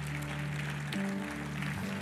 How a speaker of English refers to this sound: If you believe that word today, give a clap offering of praise to our Lord God.